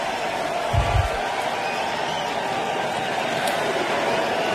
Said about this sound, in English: 15, Max Homer has two putts to win the hole here. But he wants to hear the roar of the crowd. And he's going to get it.